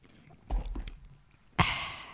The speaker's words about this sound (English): Make sure you're talking to the mic or else it won't get you. I'm chewing. You like the sound? Do you want me to get the swallow in there?